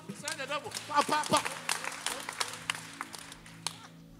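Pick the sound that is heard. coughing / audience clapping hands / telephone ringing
audience clapping hands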